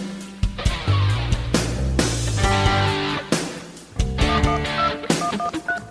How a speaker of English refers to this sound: Hey, wait a second, we have a phone call.